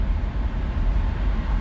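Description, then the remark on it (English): A steady, low rumble of traffic heard from inside a car stuck in traffic, a constant droning hum with little variation across the moment and no voices. “As you guys know, I'm still in traffic.”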